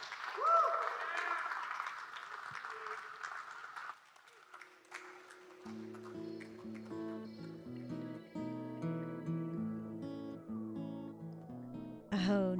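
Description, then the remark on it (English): An audience of people from Macon, Georgia breaks into a dense round of applause with some cheering for about four seconds, then it dies away as steady instrumental music begins playing. “And give yourselves a round of applause for being from Macon.”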